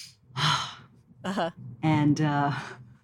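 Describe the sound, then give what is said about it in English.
A deep, airy breath drawn in, followed by voiced, sighing exhalations that trail off over a few seconds. “So what I would recommend our listeners to do right now is to take a deep breath.”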